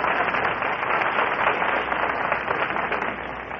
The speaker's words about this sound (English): Well, I think you ought to take a deep bow to the audience, and I think you ought to get a big round of applause.